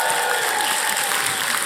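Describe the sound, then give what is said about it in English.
A large audience in Manchester applauds, a steady dense wash of clapping that holds at an even, fairly loud level throughout with no voices rising above it. “Manchester, give yourself a big round of applause.”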